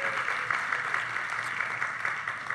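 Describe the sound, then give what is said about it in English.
A studio audience at a panel programme (the news for August 16, 2021) claps steadily for a couple of seconds, a dense, even wash of hand claps with no voices on top, sustained at a moderate level throughout. “And we have a wonderful studio audience with us, so let's hear it again. Make yourselves known.”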